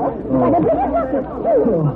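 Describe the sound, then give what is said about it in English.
A crowd approaches from the main house, chattering in a steady, overlapping murmur of many voices, no single word standing out, holding at a fairly even loudness for about two seconds. “There comes a crowd from the main house.”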